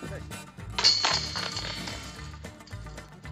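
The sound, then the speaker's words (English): A disc slams into a disc golf basket at hole 18, setting off a loud, bright metallic jangle of chains that shimmers and fades over about a second and a half, over a low steady background hum. “Banging chains. Banging chains.”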